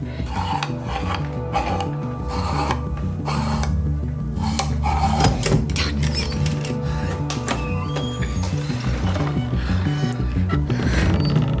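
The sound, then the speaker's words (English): Wooden pieces of a shoe rack slide puzzle scrape and clack as they are slid around repeatedly, a steady run of rubbing, rattling knocks over a continuous musical background, fairly loud throughout. “The shoe rack is a slide puzzle.”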